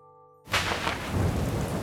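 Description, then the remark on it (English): A soft low drone cuts off and a heavy downpour of rain bursts in, steady hissing, with a deep rolling rumble of thunder swelling underneath. No one speaks. “For months, Beale's band trekked through wind, rain, and hail.”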